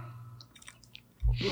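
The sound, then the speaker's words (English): Small wet mouth clicks lead into a loud slurping sip of a grapefruit-flavored sparkling drink near the end, with a burst of airy, fizzy noise. No one speaks. “Excuse the slurping noises.”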